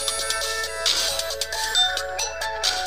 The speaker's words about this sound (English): I don't know if you heard my phone go off just then, but, you know, my car's warranty is about to expire. Actually, I don't know if it was that. It just came up spam risk, so I hung up.